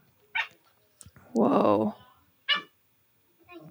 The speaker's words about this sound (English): Whoa. I hear dogs and talking.